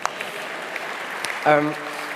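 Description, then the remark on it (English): A steady wash of crowd applause for a game at a church service, dense and even, with a few sharper claps and a brief voiced cheer rising over it midway before the clapping continues. “Round of applause for the game.”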